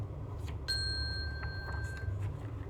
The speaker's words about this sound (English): When you hear the chime, turn the page.